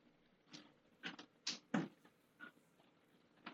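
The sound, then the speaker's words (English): A cat scratches and paws at a door in about half a dozen short, scraping bursts with uneven gaps, fairly quiet and with no voices. “Sorry, my cat's now being Jack Nicholson chopping down the fucking door.”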